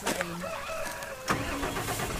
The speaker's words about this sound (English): Oh, starting the car. Starting the old tracker.